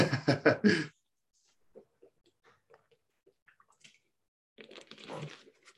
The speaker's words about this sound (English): So, 2 seconds to get a wee drink of water.